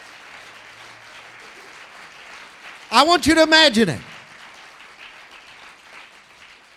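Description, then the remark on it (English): A church audience claps steadily in a dense, continuous wash of applause, while a man briefly speaks loudly over it around the middle before the clapping carries on. “You're not clapping loud enough right now.”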